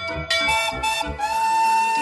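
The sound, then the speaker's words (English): A big blue fire engine with two water cannons sounds its steady whistle alongside a bell clanging in quick, regular strikes, both loud, lasting about two seconds with no voices. “She has both a whistle and a bell, and they sound like this.”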